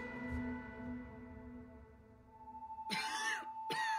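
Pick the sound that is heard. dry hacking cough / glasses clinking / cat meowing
dry hacking cough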